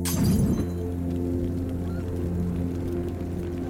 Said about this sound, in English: One of them throws another of their homemade firebombs, which Johnny sees high in the air. He raises his arm straight and fires the pistol, exploding the Molotov in midair.